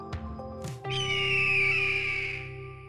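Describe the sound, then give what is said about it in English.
A hawk's squawk rings out as one long, loud, raspy screech lasting about two seconds, preceded by a few brief tonal chirps, with no voices present. “Let's get squawking.”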